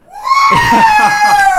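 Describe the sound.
A single loud, sustained scream rises sharply and holds at a high pitch for over a second, raw and strained, with faint crowd-like noise underneath; a fan screaming as loud as possible at a football game while the team is on defense.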